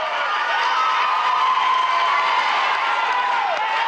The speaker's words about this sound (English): And we came out of Senator Danforth's office, and we were going down the hallway. And all these people were clapping and very excited.